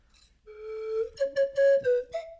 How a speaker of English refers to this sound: That's why that's a professional slide whistle.